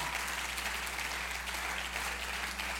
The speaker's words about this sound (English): Let's clap our hands and thank God for his word.